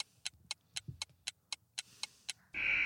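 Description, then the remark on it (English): A countdown timer for a quiz question ticks in a quick, steady rhythm, about four sharp ticks per second, then a loud, sustained buzzer sounds as time runs out. “Time's ticking, boys.”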